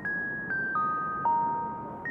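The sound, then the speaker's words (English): A doorbell at a deep crimson door chimes a short descending melody of clear, ringing electronic tones, each note sustaining into the next, with a final note starting again at the end. No voices. “I'll ring the doorbell.”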